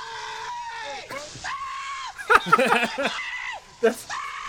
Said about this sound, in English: Is this not a Tim and Eric fucking skit? Hey, buddy. That's Tim screaming.